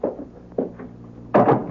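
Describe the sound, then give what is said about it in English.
A door being closed: a couple of soft wooden bumps and shuffles, then a louder, fuller thud as it shuts. No one speaks. “Let me close the door, huh?”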